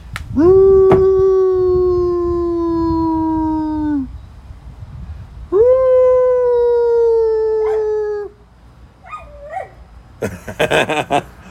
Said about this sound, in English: I bet I can get her to howl. Let's try it.